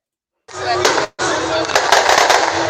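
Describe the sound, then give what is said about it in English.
Loud fireworks explode in a dense, continuous barrage of crackling bangs and sharp pops, briefly pausing for a split second before the rapid-fire bursts resume just as intensely. “I titled it More Than Fireworks”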